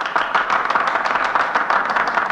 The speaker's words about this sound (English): I hope the history books will record that applause, because much of it comes from senators who are going to vote in a few minutes for my removal from office.